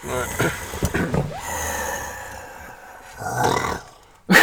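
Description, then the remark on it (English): A person imitates a snarling growl with rough, throaty rasps in several uneven bursts, a low sustained rumble in the middle, and a sharp, louder snarl at the very end. “You got a deep throat sound like whenever you're growling.”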